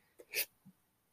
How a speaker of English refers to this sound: I got the burps and hiccups all at once happening here.